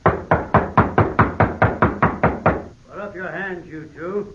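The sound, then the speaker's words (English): A rapid, steady series of about ten loud knocks on a wooden door over a couple of seconds, followed by a man's voice speaking. “Nobody answers, Hoppy. You figure this is the right place? Yeah. Wade Benson's name is on the gate. Knock again.”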